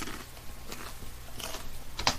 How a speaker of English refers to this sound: It was an apple crunch sound because kneecaps are tasty.